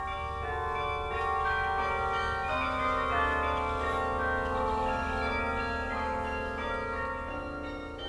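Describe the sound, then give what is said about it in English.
A carillon of 60 bronze bells, the biggest weighing nearly 12 tons, in a 200-foot Gothic tower at Bach Tower Gardens in Florida, rings out together in a rich, sustained wash of overlapping tones, loud and continuous with long resonant decays and no voices. “Inside the tower is a carillon containing 60 bronze bells, the biggest weighing nearly 12 tons.”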